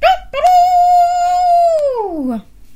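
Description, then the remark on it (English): Children imitate an elephant trumpeting with its trunk: one long, loud, steady high-pitched call that swoops downward at the end, preceded by a brief yelp. “Can you do a big trumpet with your trunk?”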